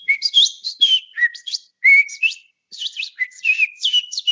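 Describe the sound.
A person whistles an imitation of birdsong, a rapid run of warbling, chirping notes in quick bursts with a brief pause midway, fairly loud, with no talking.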